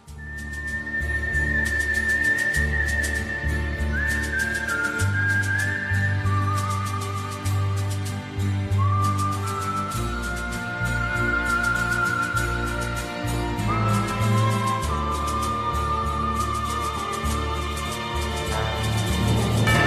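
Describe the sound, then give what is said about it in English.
A whistled western film theme from the film Pistolero della Ave Maria (The Forgotten Pistolero) carries a sliding, lyrical melody above a steady band backing with bass and light percussion, loud and continuous throughout, with no one speaking. “created one of the ultimate soundtracks with his whistling theme for Pistolero della Ave Maria, or The Forgotten Pistolero.”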